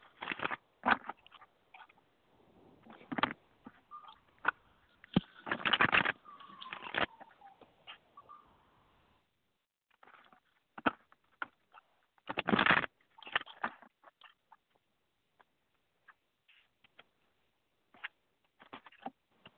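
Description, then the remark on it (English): A deck of cards being shuffled: bursts of quick papery riffling and flicking, a few longer dense riffles among scattered light taps and snaps, with pauses between. No one speaks. “Let me shuffle.”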